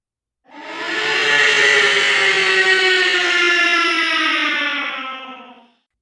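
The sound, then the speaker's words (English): A single loud, sustained monster roar built from a scream tweaked with effects in Audacity to sound like Godzilla's roar: harsh and richly harmonic, its pitch sagging slowly downward over about five seconds before cutting off. No one speaks. “And then I'm going to take that scream and I'm going to tweak it in Audacity. And I'm going to add a bunch of effects to it.”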